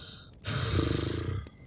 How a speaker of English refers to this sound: The forlorn sigh of a sad little Lucy puppy on the other side of the door. Like, why won't you let me in? She wants to be involved, but not this time, Lucy. Not this time.